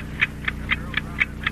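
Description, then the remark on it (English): An old clock ticks steadily, six crisp, evenly spaced clicks in about a second and a half, sharp and mid-pitched over a faint low hum, with no voices. “To that ticking. Oh, just that old clock of ours.”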